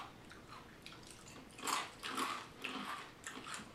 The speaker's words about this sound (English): I like Special K too. I like regular Special K. Wow, it's crunchy.